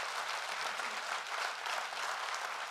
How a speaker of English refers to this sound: They have, if you give them a great big hand clap, because I just want to honor them.